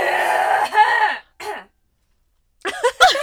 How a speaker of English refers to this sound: Oh no, I really need a cough. There's something in my throat.